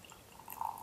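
A short splash of Barks root beer poured into a glass, a soft liquid trickle that swells over its final half-second, fairly quiet, with no voices.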